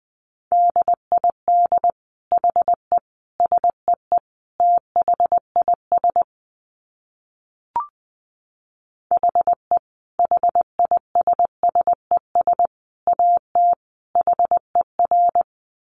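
A steady, clear Morse code tone keys out quick dits and dahs at 20 words per minute, alone and fairly loud, with a short pause and a faint click midway before the sending resumes.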